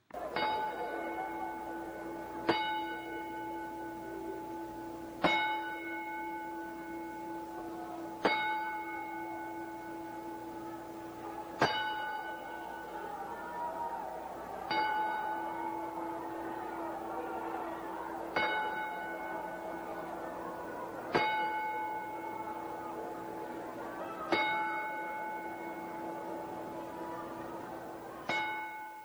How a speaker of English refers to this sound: Nelson Frazier Jr., otherwise known as King Mabel, Viscera, or Big Daddy V, passed away. So I guess it's only fitting that we give him a 10-bell salute.